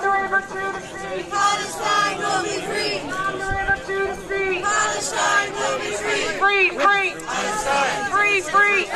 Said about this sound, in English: There's a crowd gathering outside the Irish Parliament, and they are chanting, "Palestine will be free from the river to the sea."